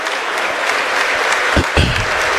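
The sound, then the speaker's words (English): Steady applause from Warrior fans and players as Pleasant Hill High School gets the Sportsmanship Award, a dense wash of many hands clapping at an even loudness throughout, with a couple of slightly heavier bursts near the end. “Warrior fans and players applaud that.”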